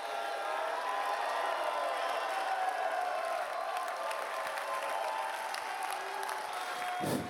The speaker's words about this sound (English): Give the Lord a clap and a shout in here. Come on, give the Lord a clap and a shout in here. I don't know who that's for, but I would give the Lord a clap and a shout in here.